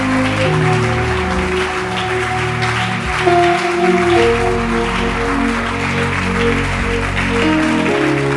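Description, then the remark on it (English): A crowd claps steadily and densely for about eight seconds without a break, over sustained low, droning tones underneath. “Don't stop clapping.”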